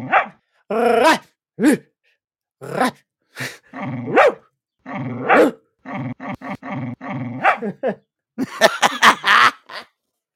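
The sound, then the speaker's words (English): A dog barks repeatedly in uneven bursts with low growls between them, loud, ending in a rapid, rough flurry of yips and snarls. “He wants to hear you bark back at him.”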